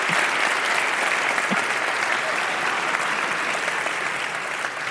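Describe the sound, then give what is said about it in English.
Sustained, dense applause from a large San Francisco audience welcoming George Takei to the stage, loud and steady throughout with no voices standing out, many hands clapping continuously. “That certainly is an oh my crowd. Yes. San Francisco crowd. There is a lot of love for you here, George Takei.”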